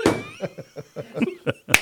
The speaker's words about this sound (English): Yeah, listen for the claps throughout the episode.